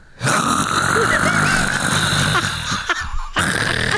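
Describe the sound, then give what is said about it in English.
Someone mimics loud snoring with their voice: a long, raspy, rattling snore, a short pause, then another snore begins. “All you hear is this guy just snoring.”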